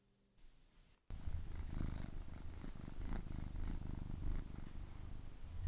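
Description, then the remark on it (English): A cat named Storm purrs steadily, a continuous low rumbling vibration with a soft rhythmic pulse, starting after a brief quiet moment and continuing without any talking. “Purring by Storm.”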